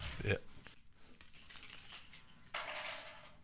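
Keys clink and jangle as they're set down on a table, a bright metallic rattle near the start, followed by faint shuffling and a broader rustle toward the end.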